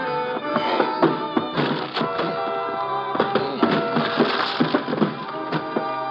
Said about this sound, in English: I pound upstairs and down the hall to her door. There's a faint smell of gas. I start throwing my shoulder against the door.